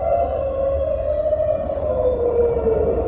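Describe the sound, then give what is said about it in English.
A long, sustained, whale-like cry of the Pokémon Lugia that glides slowly downward in pitch, steady and fairly loud over a low rumbling background, with no speech. “All of them shriek, except, and then Lugia is the one that's just like, oh yeah, like a whale song.”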